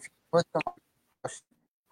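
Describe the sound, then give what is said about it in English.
A voice on a call breaks up into a few short, choppy fragments, each chopped off abruptly and followed by dead silence, as if the line keeps dropping out. “What was that? Cut out.”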